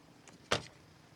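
A single sharp thump of a car door being shut by a senator getting into the car as a reporter questions her, preceded by a faint rustle and then a brief fading tail. No one speaks.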